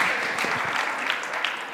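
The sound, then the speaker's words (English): A group gives a round of applause for everyone, a steady wash of clapping, dense and sustained for the whole moment with no clear individual claps standing out, and a faint voice or two underneath. “Round of applause for everyone.”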